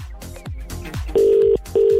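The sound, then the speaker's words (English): A few low thumping beats give way to a telephone ringback tone: two steady, loud purring rings with a short gap between them, as the Opinion Line on Cork's 96 FM radio station places a call to a listener. “Now, someone's at the end of this phone line.”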